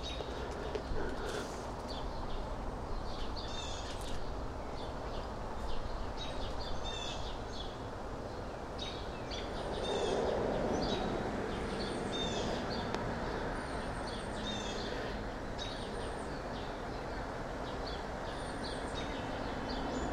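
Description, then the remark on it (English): Birds call outdoors over a steady background hum, with repeated chirps and short high trills scattered throughout and a lower cooing note near the middle, all without talking. “They could be squirrels, or starlings, or robins, or sparrows, or catbirds, or mockingbirds, blackbirds. I don't know.”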